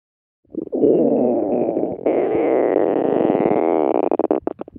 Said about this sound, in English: Do you know what sound this is? Shout it out. A stomach rumble. A stomach rumble.